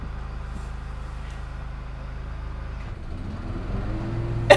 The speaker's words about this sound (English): We can't escape. Can't catch a break as far as noise is concerned. Can't escape the lawnmower.